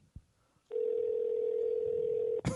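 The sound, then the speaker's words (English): A phone's ringing tone sounds on an outgoing call: one steady, loud electronic buzz held for under two seconds, with a soft click before it and a short burst of noise as it ends. “Why does no one answer your phone calls?”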